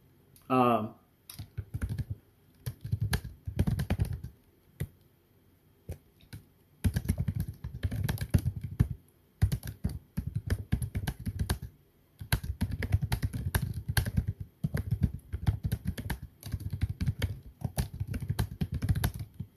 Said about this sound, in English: I'm going to type him the questions and then he'll be able to speak. And as I'm typing them, I'm going to go ahead and state them as well.